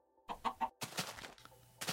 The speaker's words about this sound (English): Oh, hello, chicken.